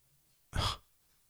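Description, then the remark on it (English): A single short, sharp sniff of a glass of beer to smell its aroma, a quick breathy inhale through the nose lasting a fraction of a second, with quiet silence before and after. “And then I'm not doing a review of this beer, so you sniff it. aroma.”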